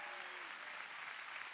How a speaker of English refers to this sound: I need you to clap real big. Come on.